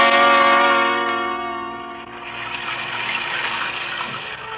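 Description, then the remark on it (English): A sustained, ringing tonal chord fades into a steady, loud rushing hiss of heavy rain beating down on the low skylight of a small 2x4 dressing room, continuous and unbroken, with no voices. “It was raining, beating down on the low skylight like a fury.”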